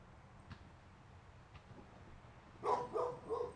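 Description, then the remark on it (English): A dog barks three times in quick succession near the end, following a few seconds of quiet room tone with a couple of faint taps; the barks are moderately loud and slightly muffled. “going to bark.”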